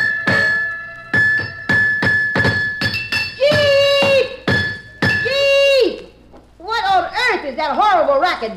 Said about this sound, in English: I gotta chisel off some of the cement so I can lift this darn thing, don't I? How else am I gonna get any muscles?